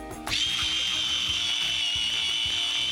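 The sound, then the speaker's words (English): An electric pencil sharpener starts up and sharpens a plantable colored pencil, running with a steady, high-pitched motorized whir and a faint rhythmic grinding of the pencil underneath, continuing throughout without any talking. “for letting me borrow your pencil sharpener”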